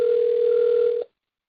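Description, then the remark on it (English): A steady, unbroken telephone line tone holds at one pitch for about a second, then cuts off abruptly into silence. It sounds clear, with no voices. “That's somebody else's phone.”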